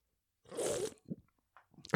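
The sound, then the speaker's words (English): A short slurping sip of nitro cold brew coffee from a can, a breathy burst of noise, followed by a few faint swallowing and mouth sounds, ending in a sharp rustle. “All right, Dad, give it a sip.”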